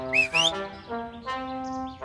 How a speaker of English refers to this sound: And then she turned and whistled to someone.